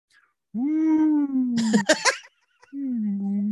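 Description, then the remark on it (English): A voice imitates the call of the Purgle, a space whale with tentacles instead of a tail from Star Wars Rebels: a long, low, droning moan, a few breathy, rasping bursts, then a second steady moan. Fairly loud, with no other sounds. “So if folks didn't watch Star Wars Rebels, this is where these like space whales with tentacles instead of tails, they make their noise”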